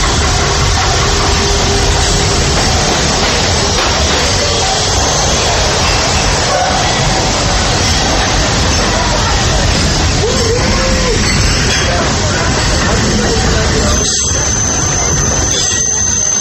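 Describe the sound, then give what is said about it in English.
A train rolls into the station at Adventureland or Frontierland with a loud, continuous rumble and clatter. The noise stays steady throughout, and a thin high squeal, like brakes, rises near the end. “I'll stay safe and sound right here aboard my train if you don't mind.”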